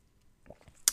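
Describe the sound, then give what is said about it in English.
Someone sipping water on a hot day of about 90 degrees in California: a few faint, wet mouth and swallowing sounds, then a brief, sharper lip smack at the end. No one speaks. “But anyway, excuse me as I sip my water.”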